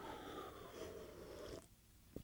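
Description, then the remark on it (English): A long, steady, airy slurp of soda being sipped slowly from a glass tumbler breaks off abruptly, followed after a short pause by a single quick gurgling burble. No one speaks. “A little burble. Did you hear that burble at the end?”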